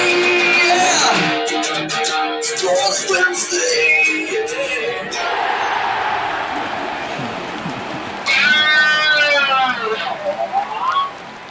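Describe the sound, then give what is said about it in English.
Loud rock intro music for the Sports Wednesday show with a noisy, dense backing, finishing with an electric guitar, a band special, squealing through wavering, bending high notes for the last few seconds. No one speaks. “Oh, guitar was talking at the end.”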